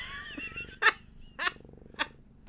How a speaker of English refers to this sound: Listen, we can all have purring in the background. It's fine. Okay, as long as he doesn't sit on my papers.